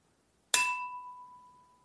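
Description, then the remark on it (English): A single sharp clink of a box cutter striking a wine glass, followed by a clear, high glassy ring that sustains and slowly fades. No voices are heard. “I'm just smashed a box cutter into a wine glass.”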